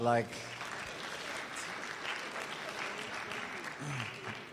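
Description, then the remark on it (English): An audience breaks into steady applause for one another for being there that morning, a dense, even wash of clapping that holds for several seconds, with a brief harmonic tone at the very start. “I just want to say, I think you can give the person next to you a hand of applause for being here this morning.”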